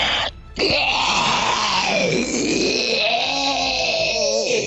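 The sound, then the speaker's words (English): A great beast lurching out of the water gives a loud, bestial cry, a deep groaning bellow with an almost human, wailing quality. It swoops up and down in pitch over several seconds after a brief opening pause, with no talking. “There is an almost human element to the cry from this beast in the water.”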